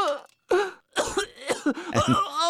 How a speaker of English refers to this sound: And yeah, I should have been playing the extended coughing.